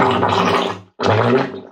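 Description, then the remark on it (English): Two wet, bubbly blasts like a fart underwater, each about a second long with a brief gap between, loud with a gurgling, burbling texture and no talking. “This is an aqua fart.”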